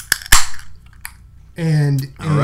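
A bottle of Why Laugh When You Can Cry beer, from local brewery Tired Hands, is opened with two sharp metallic pops close together, then a faint softer click, followed by voices talking.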